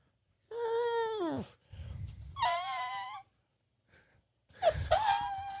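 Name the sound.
person imitating an elephant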